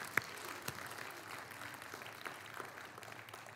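An audience breaks into steady, dense applause, many hands clapping together in a continuous wash with a few sharper claps standing out. It stays fairly soft and even throughout, with no talking.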